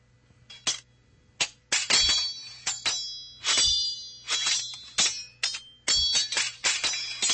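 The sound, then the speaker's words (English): Sword blades clash and clink again and again in an irregular rhythm, about a dozen bright, ringing strikes with high shimmering overtones that linger briefly after each hit. No one speaks. “That's not the sound of dropping silverware. It's sword ratchetness.”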